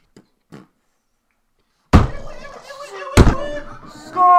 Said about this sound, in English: I fucking told you about slamming the goddamn table!